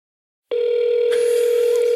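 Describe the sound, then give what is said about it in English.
An unanswered phone call rings out with the recipient's voicemail turned off: after a short silence, a steady electronic ringing tone starts and holds continuously, clear and fairly loud, with no one speaking. “Do I give up? Yeah, I mean, I'll stop ringing eventually.”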